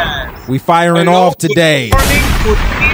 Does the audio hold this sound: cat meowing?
no